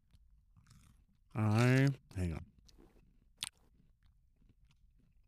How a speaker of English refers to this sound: I hate that you're chewing. It sounds so gross. And you're chewing like the what I'm chewing is like soft crunchy. Yours are like the crunch.